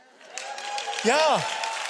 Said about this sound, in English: Yeah. Cheap applause for me. Thank you very much.